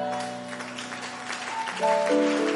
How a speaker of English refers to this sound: No, no, increase that clap offering, I beg you.